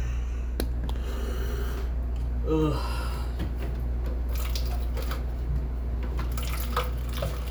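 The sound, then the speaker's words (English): Clean water runs and trickles steadily into a cup from a sink tap, with small splashes and drips over a constant low hum; a brief voice sound breaks in midway. “I'm pouring clean water in my cup.”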